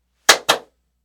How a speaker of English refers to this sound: That's what it sounds like. That is what a clap is, in case anyone was confused. It's the double clap.